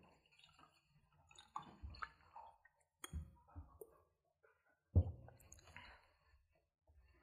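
Water spills and drips onto a table, with irregular wet taps, splashes and small clicks scattered across several seconds, one louder splat standing out midway.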